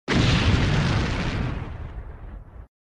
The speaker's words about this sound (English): What is this? Super Mario 64 explosion sound effect.